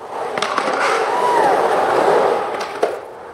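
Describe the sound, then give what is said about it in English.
Roller skaters roll across Surrey's Chuck Bailey Skate Park in Metro Vancouver at a free community clinic put on by the East Van Skate Crows: a steady, gritty whir of wheels on concrete, punctuated by a few sharp clacks and thumps, with faint crowd murmur. “An East Van skate group is putting on a community clinic this weekend, inspired by the explosion of roller skating during the pandemic.”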